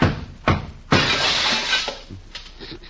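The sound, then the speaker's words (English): A glass perfume bottle smashes: a couple of sharp knocks, then a loud, bright shatter that rings for about a second before trailing off into a few scattered tinkles of falling shards. “Boy, what a beautiful bottle of perfume.”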